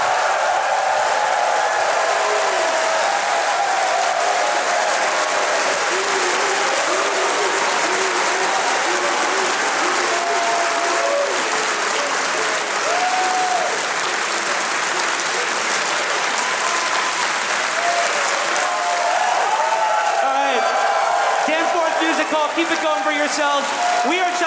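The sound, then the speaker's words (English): An audience at a live show in Canada claps steadily and loudly for a fan of the show, a dense, continuous wash of applause with scattered cheers and whoops rising near the end. “If you guys could just bring your hands together for a fan of the show”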